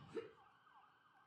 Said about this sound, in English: Yeah, the ambulance is outside.